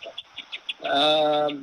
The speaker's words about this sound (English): he's sitting outside on his deck, and I hear this bird. I don't know if y'all can hear it listening to us.